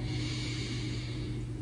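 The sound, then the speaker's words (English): A deep, airy breath drawn in and out through the mouth, fairly loud, with a steady rushing sound that holds evenly for the length of the moment and no talking. “So breathing in and out through the mouth.”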